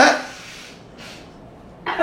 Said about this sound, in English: Oh my god, no, you didn't just cough after you sneezed. I mean, after you blew your nose.